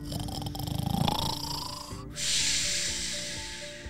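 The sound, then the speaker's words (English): A big, rumbling dinosaur snore: a deep, rattling inhale swells up, then breaks into a long, breathy hissing exhale, loud with no talking. “Have you ever heard a dinosaur snore? They are pretty loud snorers.”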